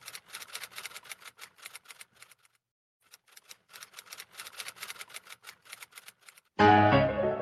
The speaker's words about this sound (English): Like, she's just fucking tippy-typing. Like, she's trying to appear like she's typing.